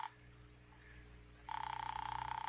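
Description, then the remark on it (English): A telephone starts ringing partway through, a loud, rapidly trembling electric ring that sounds tinny, as if heard over a phone line, after a moment of quiet line hiss. “Ring that line you've been holding for me. All right, Doctor, it's ringing here.”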